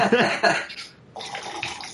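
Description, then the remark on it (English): A drink is poured into a glass close to the microphone, a splashing, hissing stream that pauses briefly partway through and then resumes at a steady flow. “Pouring a new drink.”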